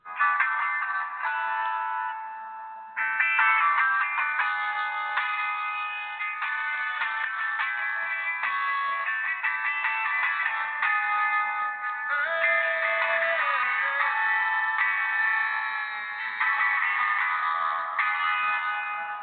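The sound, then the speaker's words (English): A melodic phone ringtone plays on and on for nearly twenty seconds, a bright, tinny tune with shifting notes at steady loudness, with no voices alongside it. “Ugh, this phone drives me crazy.”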